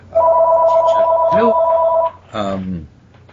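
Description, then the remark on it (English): A telephone rings with a steady, fairly loud electronic tone that holds for about two seconds, while a voice briefly talks over it and again just after it stops. “At least it wasn't my phone.”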